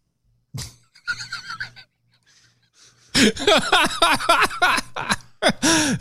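A horse neighs loudly, a long shaky whinny with quavering, falling cries, preceded by a sharp snort and some breathy rustling. No one speaks.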